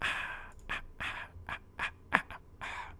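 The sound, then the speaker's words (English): Heavy, rhythmic panting recorded as a breathing track, with about eight quick breathy huffs in a steady in-and-out pattern and no talking. “Maybe I'll just do another track of breathing.”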